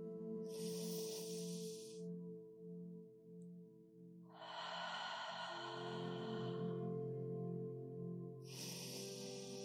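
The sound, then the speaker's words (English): Slow, deep breaths in a guided breathing exercise, breathing in for four, holding a moment, exhaling for six: airy, hissing rushes of air, a short one followed by a long, drawn-out exhale and another starting, over a steady low humming drone. “And we're going to start with three nourishing breaths, breathing in for four, holding it for a moment, and then exhaling for six.”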